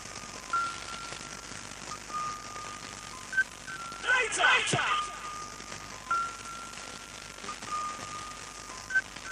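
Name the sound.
telephone dialing tones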